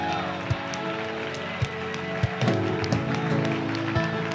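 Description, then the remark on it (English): A church audience applauds steadily for a few seconds, a dense wash of clapping over sustained musical tones, with a few dull low thumps scattered through. “Let's give those people a great round of applause.”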